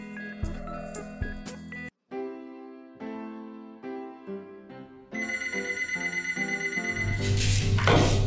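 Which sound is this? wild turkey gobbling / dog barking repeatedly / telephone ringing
telephone ringing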